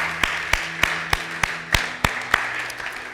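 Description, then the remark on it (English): A church audience applauds, a dense wash of clapping with sharp, evenly spaced claps standing out roughly three times per second. No one speaks over it. “And so we as a church want to celebrate with anyone who's done that here in the building or online by just giving a warm round of applause to anyone who's made that decision here tonight.”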